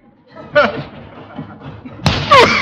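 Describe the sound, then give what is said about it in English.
A heavy body thuds hard into a padded tackling sack after a running start, with a second dull slam a moment later, mixed with grunts and strained voices. “Gosh, look at that sack. It's all lopsided.”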